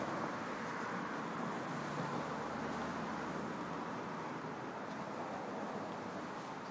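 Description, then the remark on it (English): A steady wash of street traffic at a bus stop rumbles on without pause, a broad, even roar of passing cars with a touch of wind, unchanging throughout. “So I think what I'll do is I'll have you hang out with me here at the bus stop until the bus shows up.”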